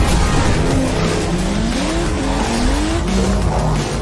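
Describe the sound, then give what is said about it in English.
Racing cars in a video game trailer skid and squeal loudly, tire whines sliding up and down in pitch over a constant roaring engine rumble, with no talking. “Watch those cars.”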